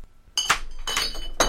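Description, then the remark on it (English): Glass objects clatter and clink as they are knocked over, a burst of bright ringing chinks starting abruptly, settling briefly, then another sharp clink near the end. No voices are heard. “You knock them all over?”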